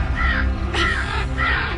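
raven cawing

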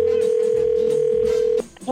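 telephone dialing and ringing

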